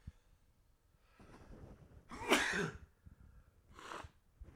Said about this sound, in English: I'm about to sneeze.